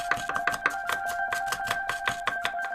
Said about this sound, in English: Now let's lay it down and chop it up. Everybody turn your hand sideways and start chopping.